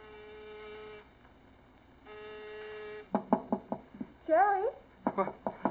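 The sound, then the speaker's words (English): Two long electric buzzes are followed by loud knocking on a door in quick bursts of several raps, with a voice calling out between the knocks. “Jerry, it's me, Larry. What? Open the door.”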